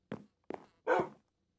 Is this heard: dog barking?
yes